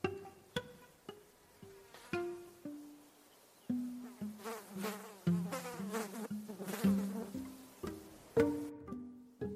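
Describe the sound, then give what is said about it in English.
A fly buzzes in a run of short, stop-start bursts, its whiny drone rising and dipping in pitch as it flits around. The sound is fairly quiet and there is no talking. “Buzzing quietly along.”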